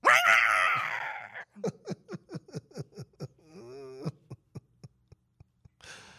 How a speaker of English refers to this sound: That cat sounds like...